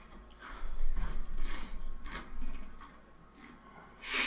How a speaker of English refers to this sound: A moment of crunching. A moment of what? Crunching.